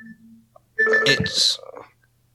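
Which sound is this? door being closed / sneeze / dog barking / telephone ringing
telephone ringing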